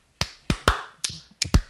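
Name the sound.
group clapping in unison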